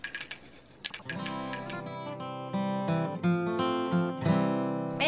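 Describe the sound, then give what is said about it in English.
A quick burst of light clinks and taps as glasses of a quinine drink touch in a toast, followed by sustained ringing tones that hold and swell for several seconds with no talking. “All right, well, we gotta get a good cheers.”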